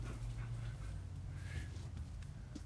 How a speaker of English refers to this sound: Everyone's coming home. There go the puppies.